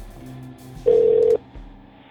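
A phone call placed from a cell phone sounds a single steady ringing tone, loud and clear for about half a second, with a faint low background hum before and after.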